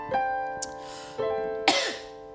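A few short, sharp coughs burst out at uneven intervals over a steady humming tonal background, clear, with no talking.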